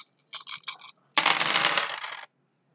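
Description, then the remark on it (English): A short burst of small hard objects clattering, then a longer, louder rattle of dice tumbling and skittering across a hard tabletop, bright, with no voices; all the dice not showing a six or a one are being rolled again. “Roll everything that hasn't got a six or a one. Okay, that's not green. So it's basically all of those dice.”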